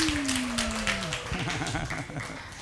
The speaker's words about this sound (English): Yeah, we can clap. Somebody wants to clap.